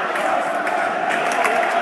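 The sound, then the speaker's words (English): A football stadium crowd at a night match involving Bradford roars steadily around the 30th minute after a misplaced Bradford pass, a dense wall of cheering voices that swells slightly, loud and continuous with no single voice standing out. “Crowd surging back.”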